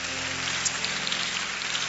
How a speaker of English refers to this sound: Let's clap our hands for Jesus once again.